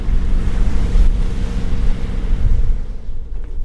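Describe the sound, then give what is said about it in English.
Steady rush of wind buffeting the microphone over lapping water and surf at a harbor with boat moorings, a dense low rumble that holds loud and continuous before easing slightly near the end, with no voices. “I think they call this the harbor.”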